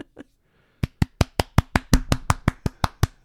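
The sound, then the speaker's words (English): Hands clap rapidly in a steady, even rhythm, about a dozen sharp claps in quick succession, after two softer claps at the start. The claps hold strong and loud throughout. “Clap louder. Faster. More intense.”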